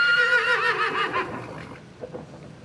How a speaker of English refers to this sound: That is a magnificently rendered horse.